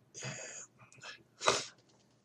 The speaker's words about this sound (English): I'm sorry, I got to sneeze.